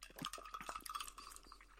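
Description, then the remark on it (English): A few bright glassy clinks ring out with short resonant tones, amid light clattering, as glasses of Southside Rickey cocktail are tapped together in a toast. “Let's cheers.”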